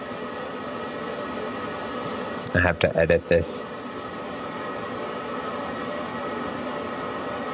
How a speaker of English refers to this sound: You hear that? Yeah, sounds like a dragon roaring. What's going on? It's just the water drains.